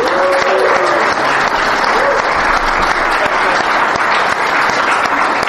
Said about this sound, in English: Beloved Patreon backers, without whom this show would have been canceled years ago, please make yourself known. Stand for your round of applause.